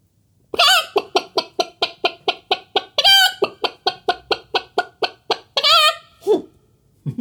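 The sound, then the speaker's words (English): Rapid, steady chicken clucking, about four sharp clucks a second, loud, broken by a couple of longer drawn-out squawks, with nothing else in the background. “Now, just in case you don't speak chicken, I'll translate it for you.”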